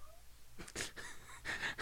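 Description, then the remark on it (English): A cat meows a few times in the background, quiet, its short plaintive cries coming in uneven bursts with no talking over them. “You're telling that story and I hear your cat in the background just meowing away.”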